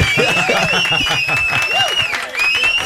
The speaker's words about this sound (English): We have like some cheers, some sounder that you can play that's like cheering or wow.